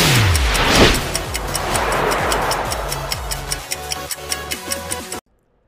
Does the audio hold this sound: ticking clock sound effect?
yes